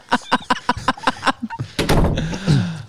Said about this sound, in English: That was the door closing, too, by the way.